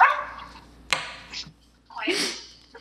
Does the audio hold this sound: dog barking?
yes